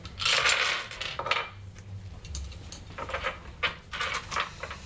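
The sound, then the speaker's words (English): Dice rattle and clatter across a hard table in an apartment in a burst of quick, bright clicks, then tumble in a few scattered knocks before settling. Fairly loud, with no talking. “Yes, free the dice. Free them to experience the air of my apartment.”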